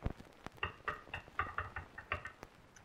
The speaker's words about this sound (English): That is, until somebody went a rap, tap, tap on my cabana door.